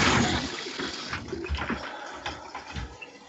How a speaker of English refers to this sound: And did someone just flush the toilet? Oh, no, I emptied the jug of water. Sorry.